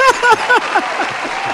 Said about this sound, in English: Where the applause at? We need some applause for that one. We're going to have to hit the applause. Oh, there it is right there.